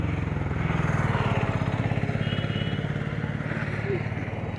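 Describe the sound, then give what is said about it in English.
Traffic noise dominated by a throbbing motor engine, a steady low rumble with rapid rhythmic pulsing and a slight clatter, holding loud and even for a few seconds. “Oh my god, rising traffic.”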